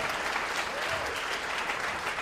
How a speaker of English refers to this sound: That got less applause than a reference of T.J. Miller.